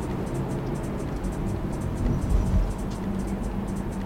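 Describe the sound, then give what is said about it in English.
Steady low rumble of a Tesla Model 3 rolling along a road with nothing on the pedals, with continuous tire and wind noise and a slight swell in the middle, no talking. “Real world driving the Tesla Model 3”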